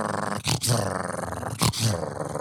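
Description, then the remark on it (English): A person growls in a dog-like imitation, a sustained rough rumble broken by two brief gasping breaths, fairly loud with no other talking. “You want to hear my dog impression? You just did it.”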